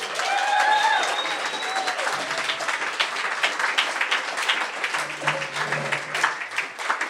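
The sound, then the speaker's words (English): An audience at a live storytelling event applauds the storytellers steadily for several seconds, with dense overlapping claps and a few whistles and cheers rising near the start. “Can we hear some clapping?”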